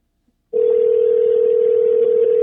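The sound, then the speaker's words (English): A telephone ringing tone starts after a brief silence and holds as one steady, unbroken electronic hum, loud, with no voices over it. “Answer the phone, Bert.”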